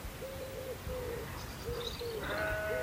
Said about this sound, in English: I can hear the wood pigeon.